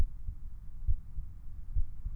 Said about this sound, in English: The red stone pendant in my pocket warms and pulses suddenly. Thump, thump. Thump, thump. Like a heartbeat.